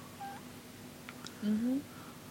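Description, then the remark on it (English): Quiet electronic phone tones: a short high beep, a few faint blips, then a longer rising tone, like a phone line handshaking or dialing. “Oh, and the phone handshaking thing.”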